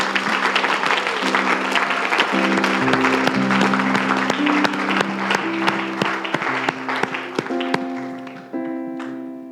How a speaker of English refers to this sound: Can we give a round of applause for our new sister?